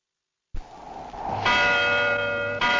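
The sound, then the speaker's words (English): A large bell rings out loud and resonant over a silent, deserted village, its strike swelling into a rich, sustained hum of overtones, with a fresh strike near the end. “The bell rings out over the village, an ominously silent, utterly deserted village.”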